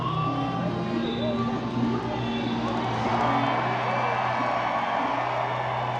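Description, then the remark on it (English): A sold-out crowd of nearly 60,000 roars and cheers continuously at a NASCAR Cup Series race at World Wide Technology Raceway in the St. Louis region, while loud engine drone from 36 stock cars speeding past the green start flag at over 130 mph fills the background, a dense, steady wall of noise with shifting engine tones. “Their shouts were easily overwhelmed by the 36 cars on the track, each speeding past the green start flag at more than 130 miles an hour.”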